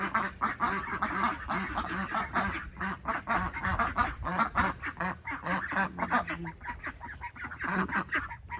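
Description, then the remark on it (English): Several ducks quack continuously, a dense, overlapping chorus of nasal calls with no pauses, loud throughout. “I'm going to share with you what the ducks are doing.”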